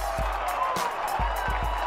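A big stadium crowd at Four Pines Park roars in a steady, dense wash of cheering after a Sea Eagles try by Walker, with scattered whoops and sharp claps or thumps punctuating the continuous noise.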